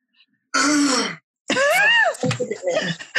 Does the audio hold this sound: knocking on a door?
no